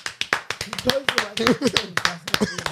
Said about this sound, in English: Hey, you lot clap for me for closing the gap.